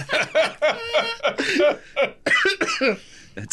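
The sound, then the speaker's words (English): A man clears his throat into the microphone in a series of harsh, raspy bursts and coughing sounds, repeated several times over a few seconds with brief pauses between them. “my father will clear his throat into the microphone.”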